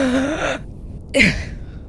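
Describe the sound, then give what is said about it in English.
A sharp, sudden, loud gasp for breath, preceded by a breathy voiced exhale and followed by a trailing airy intake, with no speech. “The feeling that you are losing consciousness if you do not get breath to your lungs soon, when suddenly a single claw slices and you emerge and gasp.”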